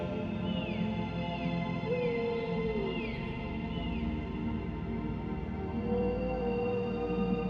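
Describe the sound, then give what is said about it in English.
Whale song drifts through steady underwater noise: a series of rising and falling tonal calls, several higher swooping cries and a lower drawn-out moan, with no talking. “You hear something deep, old, powerful. The whales are here, greeting you, swimming past, observing you with their ancient eyes.”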